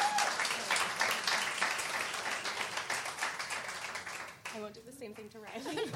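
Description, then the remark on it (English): Dense, steady audience applause fills the first four seconds, a bright crackle of many hands, then fades as a single voice begins speaking. “So I think another round of applause.”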